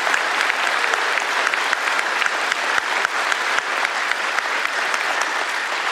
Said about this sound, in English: And can we give these students a round of applause again, all the other students serving?